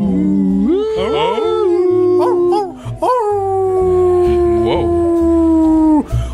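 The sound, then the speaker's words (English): A dog howls in long, sustained wavering tones, the pitch sliding up and holding before trailing off, with a second overlapping howl and a low rumbling background underneath, loud. “Are there dogs there too?”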